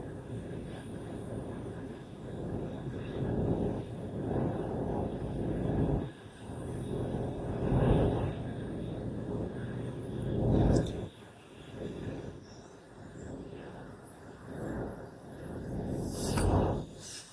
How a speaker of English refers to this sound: Traffic.